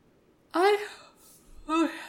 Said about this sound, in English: It's been a long day. I woke up at 6. So I'm yawning.